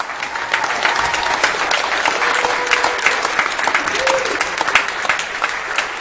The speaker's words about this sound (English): Do me a favor. Give these folks a round of applause, please.